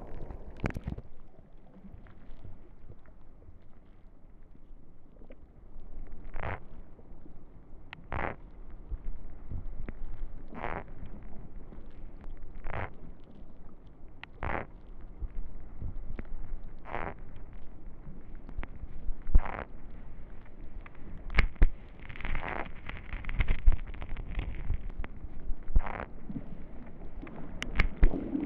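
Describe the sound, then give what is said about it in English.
Sharp, bright clicks and crunches recur at a slow, fairly regular pace over a low, rumbling underwater wash, with a dense burst of scraping crackle near the end: an octopus, having taken the hydrophone and moving it about, chews on the hydrophone cable with its beak. “What you're hearing there is the octopus chewing on the cable.”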